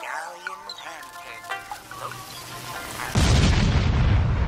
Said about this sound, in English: Dude, the TV exploded.